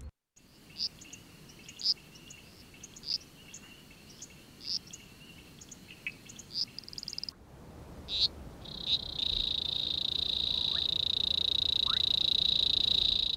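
Toads on their spring migration call in a chorus: short high chirps repeat steadily at first, then a long, continuous high-pitched trill rises and holds over a hushed outdoor night background.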